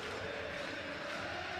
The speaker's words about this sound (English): Great finish to open up his account for RSL. Sellout crowd on its feet singing. That is why they bought tickets.